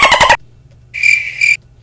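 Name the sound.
single cricket chirping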